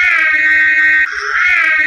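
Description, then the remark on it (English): A loud car siren blares with a steady, piercing tone that shifts pitch midway and then returns to the first note, giving a two-tone wail with no voices. “But what's really, I think, one of the most iconic parts about this car is its siren.”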